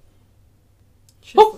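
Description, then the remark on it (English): After a stretch of near silence with a faint low hum, a single short, fairly loud dog bark sounds at the very end. “My dog needs to shh. Dutchie, go tell him to shh.”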